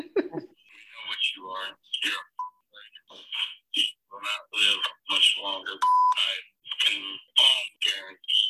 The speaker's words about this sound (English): Can't hear it. You can only hear the beeps.